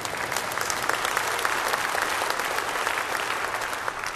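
An audience breaks into sustained applause during a sermon about dwelling in God's presence wholly free of all sin forever, dense overlapping claps forming a steady, loud crackle that holds evenly for several seconds without any voices.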